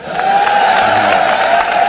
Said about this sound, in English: Lots of applause. Made a lot of sense.